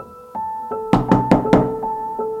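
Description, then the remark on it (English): Four firm knocks on the door of a small two-bedroom basement apartment in a modest house in suburban Burnaby, near Vancouver. The knocks come in a quick, even rhythm and are loud, over a soft sustained musical tone that keeps playing before and after. “The basement apartment was in a modest house in a suburban neighborhood, and it was a small apartment, two bedrooms, and we knocked on the door.”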